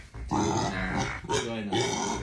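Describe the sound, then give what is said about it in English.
A pig grunts loudly in three rough, throaty bursts, with brief pauses between them and no talking. “Then a third pig tries to get onto the couch.”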